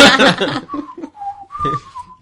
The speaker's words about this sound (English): I'm not panicking, roll to whistle tunelessly.